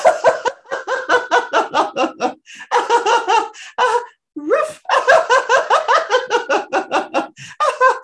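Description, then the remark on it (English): Loud laughter in quick rhythmic bursts, with people pretending to be dogs through panting, yappy sounds as a laughter exercise. It runs nearly continuously with a couple of brief pauses. “For anyone tuning in right now, audio only, we're pretending we're dogs and laughing for this laughter experiment.”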